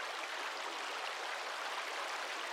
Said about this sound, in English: I think of babbling brooks.